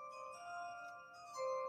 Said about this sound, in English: Chimes came in perfectly right there.